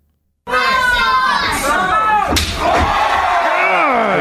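A loud wrestling crowd shouts and cheers throughout. About halfway through, a single sharp, cracking slap cuts through, followed by a duller thud as a wrestler is thrown down in a body slam, while the yelling continues.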